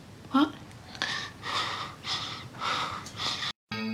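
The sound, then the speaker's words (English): Someone breathes heavily and noisily through an open mouth, four or five loud, rhythmic huffs in a row after a brief vocal noise, exaggerated like an imitation of a mouth breather. “Honey, he's a mouth breather.”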